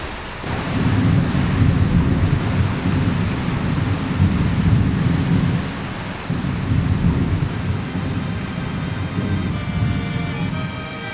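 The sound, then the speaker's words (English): Heavy rain pours steadily for the whole stretch, a dense hiss over a deep, rolling low rumble like thunder. It stays loud throughout, and no one speaks. “This bloody rain, it just...”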